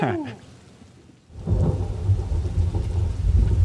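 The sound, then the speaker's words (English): After a brief faint lull, a steady roar of heavy rain pours in, with deep thunder rumbling and swelling underneath as the downpour grows louder. “It's really coming down hard out there.”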